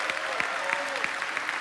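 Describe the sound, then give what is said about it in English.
A crowd claps steadily, with dense overlapping hand claps, while a voice lets out a drawn-out shout above the applause. “We should at least be able to give a shout and a clap for every single person.”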